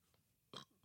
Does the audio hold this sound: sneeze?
yes